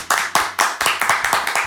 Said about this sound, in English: One more round of applause, everybody.